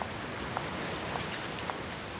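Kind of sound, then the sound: nature, wind and rain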